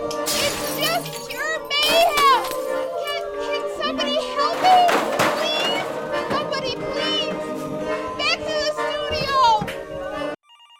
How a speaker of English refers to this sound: And now they're throwing things. Folding chairs, I think. Yes, they're hurling metal chairs at one another as they yodel.